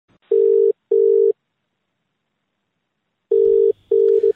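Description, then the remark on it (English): A telephone ringing tone, heard as a call is placed, sounds as two double pulses of a steady electronic hum, clear, separated by a pause of silence, with no voices. “So look, I got on the phone to Ken to see what he thinks.”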